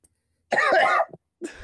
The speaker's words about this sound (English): Can you cough for us real quick? Oh, that was wet. It had some wetness to it. You little mucus.